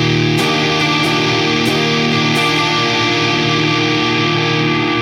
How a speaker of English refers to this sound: Again, if you listen to the Muffaletta, the Civil War. Just switch to the in-your-face fuzz.